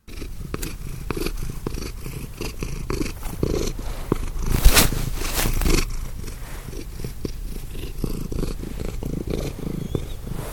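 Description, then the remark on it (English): A domestic cat named Trout purrs steadily, a continuous low rumbling with a rhythmic pulse from its breathing, loudest around the middle, with no voices present. “That's, you tell the difference? Yeah, that's trout.”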